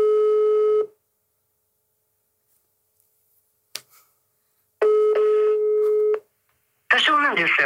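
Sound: phone call tones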